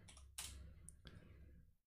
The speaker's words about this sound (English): So let's look up average time spent. Sorry, typing with one hand. Not easy.